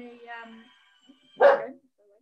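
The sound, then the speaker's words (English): A small, very excitable male dog lets out a drawn-out, whiny yip, then after a short pause gives one loud, sharp bark. “And it's just a little yapper and it's very, dogs. Very full on. It's dogs.”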